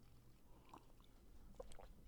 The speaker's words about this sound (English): Like, my allergies are super bad. So I might sound a little bit like a frog. Let me actually just take a sip of water.